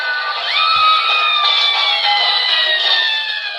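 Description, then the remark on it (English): Kattan screams on a beach in Hawaii that they are all going to die, a long, sustained, high-pitched wail over a loud, busy crowd, the cry holding steady for several seconds without a break. “So Kattan is on the beach of Hawaii screaming, by the way, they're all going to die.”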